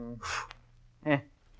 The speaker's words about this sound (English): Well, sir, I'll blow out the candle, huh?